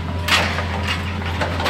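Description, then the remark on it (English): A Hitachi excavator's giant claw grabs skinny cut logs from a metal boat on a bare spot in an acacia paper-tree plantation. The logs floated in on a canal. A steady low engine drone runs throughout, broken by several rough wooden knocks and splintering crunches as the logs shift. “On a big bare spot in this sea of paper trees, the giant claw of a Hitachi excavator grabs skinny logs out of a metal boat.”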